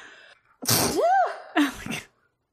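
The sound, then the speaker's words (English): A single loud sneeze: a sharp rising inhale with a tonal whoop, then an explosive burst of air and a brief trailing breath, alone without talk. “Oh no, I'm gonna sneeze.”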